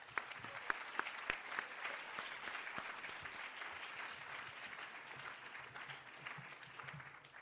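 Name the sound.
audience applause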